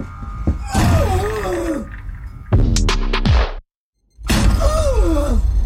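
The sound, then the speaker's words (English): A door is kicked in with a loud, sudden crashing burst midway, set among wavering groan-like vocal sounds. A short silence follows before the groaning resumes. “Booyah! Another door bites dust!”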